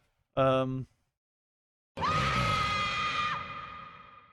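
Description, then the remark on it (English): A voice makes a short, harsh, nasal buzz imitating a buzzer, lasting about half a second. After a pause comes a longer, louder, noisy blast with a steady tone that gradually fades. “I don't have a buzzer, so that's what you're going to have to get.”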